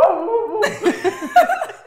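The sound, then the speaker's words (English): A guard dog gives a quick series of short, sharp barks and yips, starting with a brief high whine, all within a couple of seconds and with no one talking. “Yeah, there's a guard dog here too.”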